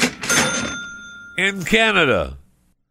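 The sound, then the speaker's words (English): A cash register ka-ching rings out, a bright bell tone with a rattling drawer, then fades as a voice swoops in with a sliding, exaggerated flourish before everything cuts to silence. “So, yeah, they still get the cash register because, man, if Canada's got 6.5 million people in it, they're doing pretty good.”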